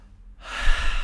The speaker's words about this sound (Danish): Og så når man banker på kravbenspunktet, det er, hvor kravbenet slutter inde i brystbenet, så tager man lige en dyb vejrtrækning.